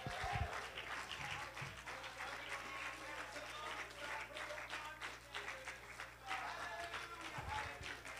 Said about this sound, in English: Come on, one more time. Why don't you put your hands together and add with that hand clap a shout of triumph in this house?